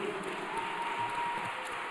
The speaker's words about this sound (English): Clap it up for that, please.